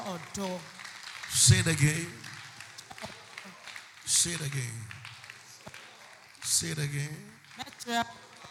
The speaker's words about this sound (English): Clap your hands and shout, I will show love.